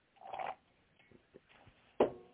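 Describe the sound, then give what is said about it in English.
A short slurping sip of coffee is followed by a few faint swallowing clicks, then a brief louder breathy exhale at the end. No talking. “And another sip of coffee, excuse me.”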